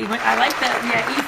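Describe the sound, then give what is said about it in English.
A brief burst of steady clapping from a small group after a freestyle rap, with voices talking over it throughout. “Listen, okay, don't applause for that.”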